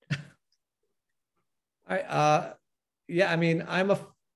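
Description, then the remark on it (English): A single loud sneeze bursts out after a brief click, followed by a short voiced sound like a follow-up exhale or mumble. “God bless you.”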